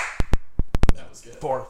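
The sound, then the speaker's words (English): A quick series of six sharp, loud hand claps in an uneven rhythm, the last three bunched close together, followed by people talking. “That was a really good clap.”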